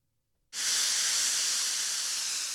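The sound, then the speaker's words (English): A loud, steady hiss of steam bursts in abruptly after a brief silence and holds constant, bright and airy, until the end with no one speaking. “No one thought I was hitting them with the steam there.”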